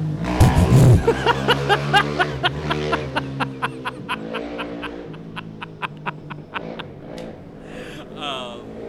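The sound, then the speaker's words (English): A small electric scooter hums steadily as it rides down the street on a cloudy day in the desert, with a regular ticking pulse running through it. “So I get back on my scooter.”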